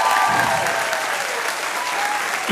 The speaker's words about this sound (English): So those are my honorable mentions, ladies and gentlemen. Excellent. Thanks. Can I get some applause? Thank you so much.